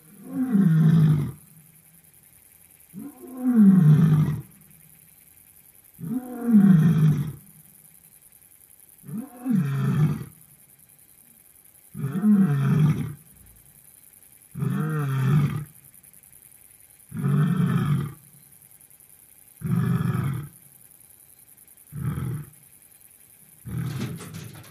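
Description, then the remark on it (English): Serga, a big cat, roars during the daytime in a steady series of about nine deep, rumbling calls, each lasting roughly a second and spaced a couple of seconds apart, with no one speaking. “It's actually rare for Serga to roar during the daytime.”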